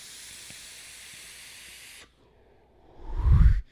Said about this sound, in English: This is very much a much more chill, a much more just take a big long drag. And the reason that I like taking these big long drags is that's the way that I smoked cigarettes.